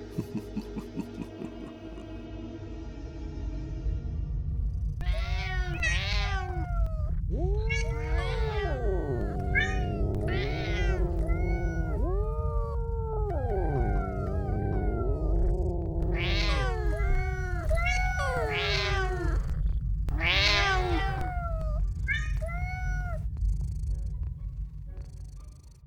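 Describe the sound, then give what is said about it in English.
A crowd of cats meows over and over, their overlapping cries rising and falling in a busy chorus above a steady low hum, loud for most of the stretch. “What better way to deal with mice than using cats? Release the cats?”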